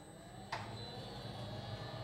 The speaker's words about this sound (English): Now I'm going to show you how the patient is sealed in the room. The protective door outside closes.